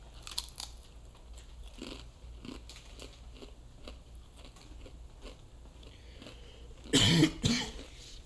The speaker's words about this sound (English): I was munching on these while Cannon was talking.